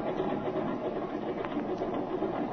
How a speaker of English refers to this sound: You take her off. And remember to keep on a little right rudder to allow for engine torque. Otherwise, you'll pull over to the left.